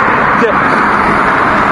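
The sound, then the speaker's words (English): A bus rumbles along the road, its loud, steady engine and tyre roar filling the short moment without fading. “That's the bus you would have got on.”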